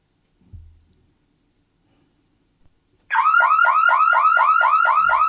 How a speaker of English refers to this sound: That sounds more like a car alarm, doesn't it?